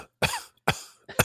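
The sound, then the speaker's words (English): Three harsh coughs in quick succession, each a sharp burst of breath that trails off briefly before the next, with no talking around them; a cold cough, not caused by COVID. “I didn't have the cough before I left.”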